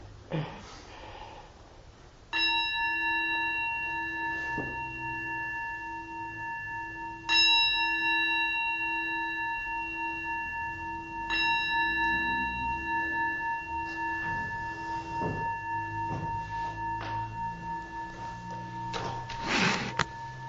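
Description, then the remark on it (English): A meditation bell is struck three times at a slow, even pace, each strike ringing out clearly with a long, shimmering sustain over quiet background noise and faint rustling. “Please ring the bell.”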